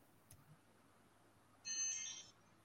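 A timer goes off with a single bright, high-pitched electronic chime lasting under a second, clearly louder than the quiet background, preceded by a faint click.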